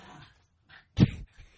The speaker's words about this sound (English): I don't think the dog's too happy with your selection.